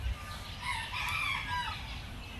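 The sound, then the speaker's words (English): Birds calling as they wake in the early morning at the end of winter, one drawn-out crowing call rising over a low outdoor rumble, with no talking. “That's the sound of the birds waking up in the morning.”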